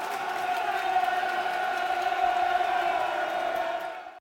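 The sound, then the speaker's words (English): A football stadium crowd roars in approval at a sliding tackle, a sustained, echoing wall of cheering and shouting that holds steady for a few seconds before cutting off abruptly. “great sliding tackle there by Jules Honeyman. Crowd loved that. Crowd loved that.”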